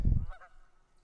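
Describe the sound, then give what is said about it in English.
Geese honk in a brief burst, a loud low-heavy cry or two, fading quickly into quiet outdoor background. “Here are the geese in our domain.”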